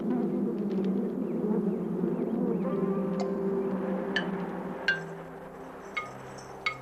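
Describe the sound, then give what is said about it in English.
A dense, steady drone of many honeybees buzzing, with a few light clinking ticks near the end and no voices. “The bees common in the United States are derived from the Italian honeybee, which was deliberately introduced here.”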